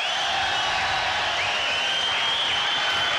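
A large concert audience applauds steadily, a dense wash of clapping and crowd noise at an even, fairly loud level, with faint high sustained tones running over it throughout.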